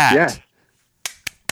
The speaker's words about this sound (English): Hear me clapping?